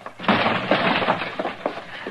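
The door of a man's house is busted open to get in, with a loud, sustained splintering crash, followed by a few sharper cracks and knocks as the wood gives way. No one speaks.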